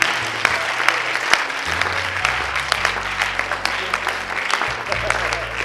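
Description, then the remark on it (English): An audience claps steadily for several seconds, a dense, even patter of many hands with a few sharper claps standing out, while low sustained musical notes shift underneath. “All the righteous are clapping.”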